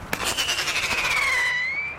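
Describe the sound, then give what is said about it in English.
A sharp pop as a screaming pyrotechnic rocket is shot from a cap gun into the night air to drive off crows, zigzagging, its piercing whistle wavering downward then rising again over crackling hiss, loud and sustained for about two seconds. “Screaming rockets shot off from a cap gun zigzag into the night air.”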